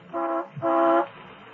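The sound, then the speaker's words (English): A school bus horn honks twice in quick succession, a short blast followed by a slightly longer one, loud, with no voices. “The horn of the school bus and a small female cyclone swept through the lower rooms of the house,”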